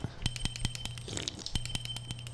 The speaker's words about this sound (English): Wait, where'd you get that bell?